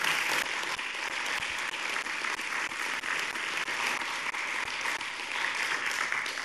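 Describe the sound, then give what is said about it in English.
A crowd claps steadily for several seconds for the longtime leader of the caring ministry, a dense, sustained wash of hand claps at even loudness with no voices over it. “She's sitting right there, and I'd like to give her a round of applause.”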